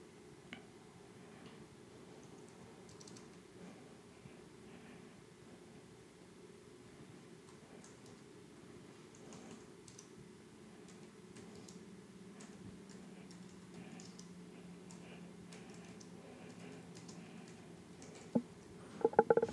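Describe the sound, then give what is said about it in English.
Soft, irregular clicking of keys as someone types a Facebook message on a computer keyboard runs throughout over a low steady hum, ending with a few sharper, louder taps. “I'm typing a Facebook message.”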